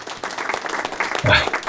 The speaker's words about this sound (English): Ladies and gentlemen, please join me in giving a huge round of virtual applause